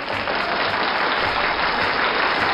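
Steady applause from a show audience for a contestant's win, a dense, continuous wash of many hands clapping at once, loud and even throughout with no voices standing out.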